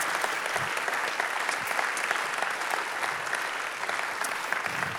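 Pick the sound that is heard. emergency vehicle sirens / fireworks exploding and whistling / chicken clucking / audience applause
audience applause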